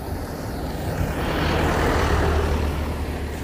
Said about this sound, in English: And another truck's coming past. Alright.